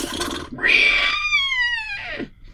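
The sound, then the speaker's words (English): A person imitates a horse's neigh with one loud, drawn-out whinny that slides downward in pitch for a couple of seconds, with breathy noise at the start and end. “And his horse, he went.”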